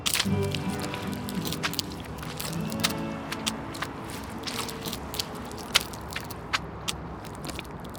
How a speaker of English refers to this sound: And there's dried chowder everywhere. He grimaces as he walks into the entrance, his shoes sticking and making disgusting noises as he lifts them up.